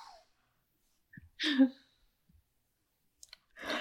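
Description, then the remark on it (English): A brief, breathy yawn, drawn out for about half a second, surrounded by soft mouth clicks and quiet breathing. “You said yawn. I had to yawn.”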